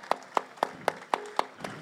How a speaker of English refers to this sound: So shout out to him again. Clap it up for him. For sure.